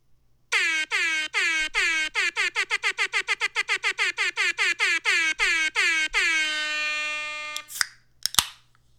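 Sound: air horns blaring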